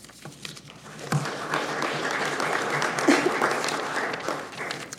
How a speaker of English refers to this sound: And with that, please give our head table a round of applause